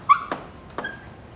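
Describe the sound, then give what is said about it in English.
A cat lets out a short, high-pitched squeak, followed by a couple of soft clicks and a faint, thin squeaky tone that trails off. No one speaks. “It's the squeaking cat.”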